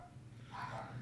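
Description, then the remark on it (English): Faint, muffled barking of dogs inside, a short burst rising in the second half over a low steady hum, with no voices. “Can you hear the dogs barking? They're losing their minds inside right now.”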